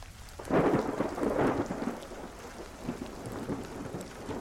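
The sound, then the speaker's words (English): A thunderstorm with steady rain hissing throughout and a deep rolling rumble of thunder swelling early on, then fading back beneath the downpour. No voices. “The night was dark and stormy, the kind of night that sends shivers down your spine even before anything unsettling happens.”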